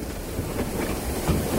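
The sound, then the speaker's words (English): A small estate train at St. Nicholas Abbey on an island rumbles steadily along rails, a continuous low clatter and rolling hum with faint rhythmic clicks of wheels over track joints, no voices. “5 strapping passengers also got to help turn the train around at the end of the line to head back in the same direction we came from.”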